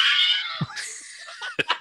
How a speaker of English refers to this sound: Can we get a couple Wilhelm screams for our dudes? You want me to do a Wilhelm scream?